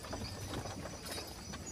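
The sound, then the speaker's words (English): Horse hooves clip-clop in a steady, repeating rhythm, fairly soft and set against a constant background hiss, with no one talking, as a horse is brought back to a river. “I was getting my horse and bringing the horse back to the river”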